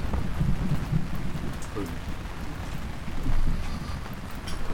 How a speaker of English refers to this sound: It's the middle of a storm. Lightning and thunder are raging around.